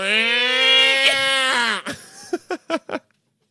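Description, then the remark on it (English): A person imitates a cat in heat with a long, wavering, nasal yowl lasting nearly two seconds, followed by four short, sharp yelps in quick succession. “And you're making the noise too.”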